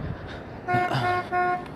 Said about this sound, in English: Someone's honking. Oh, it's the taco guy. He went to go get ice, and I guess he knows him. So he was just honking at him, like, giving him a hard time.